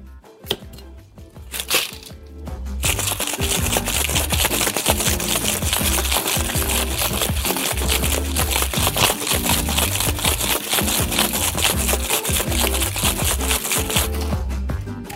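Ice rattles hard inside a cocktail shaker as an alcoholic cocktail is shaken vigorously, a loud, rapid, steady churning of clacks kept up for about ten seconds after a couple of brief knocks, with no one speaking.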